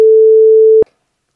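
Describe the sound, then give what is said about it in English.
A single steady censor bleep, a loud pure mid-pitched tone held for just under a second, then cut off abruptly with a faint click, followed by silence. “You just have to bleep it out.”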